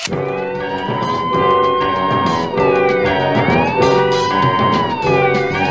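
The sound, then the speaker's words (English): Loud wailing sirens rise and fall in overlapping sweeping tones, several emergency sirens blaring together continuously, with no talking. “And now, did you hear those sirens?”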